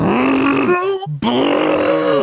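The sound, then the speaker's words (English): A voice imitates a car engine straining while floored in first gear: two loud, sustained growling drones with rising, whining pitch, split by a brief gasp-like pause. “You know, everyone that knows what a car shouldn't make knows that sound.”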